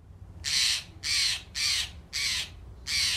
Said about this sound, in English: the Pacific Stellar Jay is a blue songbird. It's a bit bigger than a robin, and that is only found on Haida Gwaii because that was an area of, you know, the land that was ice-free during the last glaciation period.